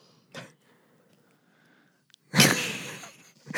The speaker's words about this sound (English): I was just yawning.